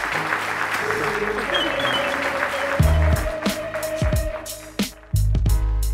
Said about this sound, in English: Thank you so much. Thank you so much. Just give them a round of applause.